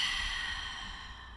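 A deep, slow breath drawn in and let out during a breathing exercise, a steady airy rush that gently fades, with no talking.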